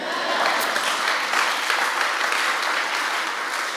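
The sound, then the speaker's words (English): Steady, dense applause from a large audience at a worship gathering, many hands clapping along with their amen in a continuous wash of sound that holds at an even, fairly loud level throughout. “Your amen should come with a clap.”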